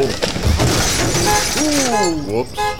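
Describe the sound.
A heavy tree branch smashes into a car with a loud, shattering crash and the crackle of breaking glass, followed by a person crying out in a long, wavering voice.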